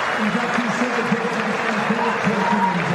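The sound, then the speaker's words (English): A large cricket crowd at Adelaide applauds a visiting batsman's half-century in a test match, a dense wash of clapping and murmur that holds evenly throughout, with a voice faintly audible beneath it. “Always a warm reception here at Adelaide, even for the visiting players. It's a well-earned round of applause.”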